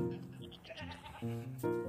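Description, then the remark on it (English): A goat lets out an odd, strained bleat in several wavering bursts, harmonic and nasal, fairly loud, not a normal goat sound, with no one speaking over it. “I named that goat Krampus because it looks just like Kramp. That one, I don't know why. I don't know why he makes that sound.”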